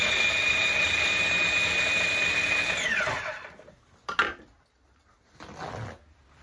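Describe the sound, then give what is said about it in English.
A food processor pulses a recipe mixture containing a lot of orange: its motor whirs loudly and steadily for about three seconds, then winds down in falling pitch, followed by a short clatter and a brief rustling noise. No one speaks. “I'm going to check the iPad just in case we didn't hear it while we were pulsing.”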